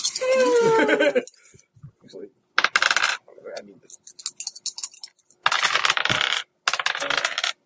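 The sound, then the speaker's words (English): A handful of dice spills onto a hard table during a game, clattering and rattling in several bursts as they bounce and scatter everywhere, with a brief voice at the start. “Dice everywhere.”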